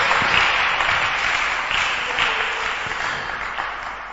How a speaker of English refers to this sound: Are you clapping for me or you're clapping for God? Clap for God.